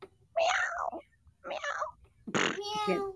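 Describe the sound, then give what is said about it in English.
A person voices three drawn-out meows in imitation of a cat, each one fairly loud with short pauses between, the last ending in a strained, buzzy tone. “If the cat's a girl, then meow.”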